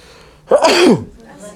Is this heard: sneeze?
yes